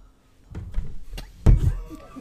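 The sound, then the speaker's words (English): A microphone gets knocked over: a few muffled bumps and rustles build to one heavy thud, then a short rattling settle, with no one speaking. “Look, you knocked over her mic.”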